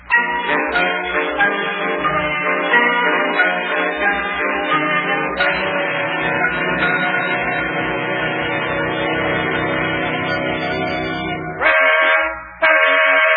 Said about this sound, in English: Oh, I'll bet that's Yuki in the wedding car honking the horn outside. Let me take a look out the window. Yeah, that's him.